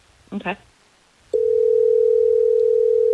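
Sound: telephone dial tone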